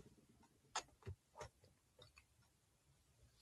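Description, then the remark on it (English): Soft clicks of a clock ticking, a few sharp ticks in quick succession and then sparser ones against a quiet, faintly noisy background with no talking. “I got a clock right here and I'm gonna put it up, you know what I'm saying, so y'all can hear it ticking.”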